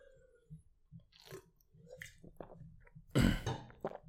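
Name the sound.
drinking water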